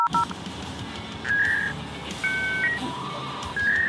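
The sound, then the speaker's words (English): A dial-up internet modem connecting: quick dialing tones, then a dense hiss with shifting high beeps and steady tones, loud with no voices. “You've got mail. Mom, get off the phone. I'm on the internet.”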